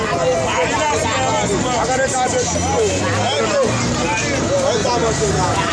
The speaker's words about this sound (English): Bus conductors shout at the top of their voices. The shouting match contest is on to find out who will outbid the other in getting the attention of commuters.